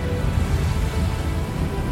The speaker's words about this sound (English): And as you're dancing, suddenly there's a loud crackle of energy off in the distance.